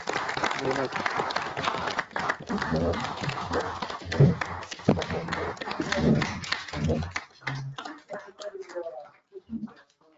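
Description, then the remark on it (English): An audience in Honesdale borough applauds with dense, steady clapping and some voices mixed in. The applause is loud at first, then thins out over the last few seconds. “because it's people like you who really do make the difference, and we applaud you for that.”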